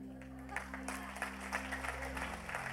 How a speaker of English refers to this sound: We are very blessed to have an incredible team of people in this place. Opportunity for applause.